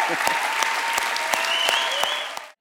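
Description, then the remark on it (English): A crowd applauds steadily to celebrate and honor people, a dense wash of clapping with a few sharper individual claps standing out, then the sound cuts off abruptly at the end. “And we applaud you, we celebrate you guys, we honor you today.”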